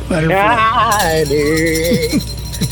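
A tambourine shakes in steady, bright jingling bursts that start partway through and continue to the end, running under a loud voice singing a sustained, wavering melody of a Christmas Eve song.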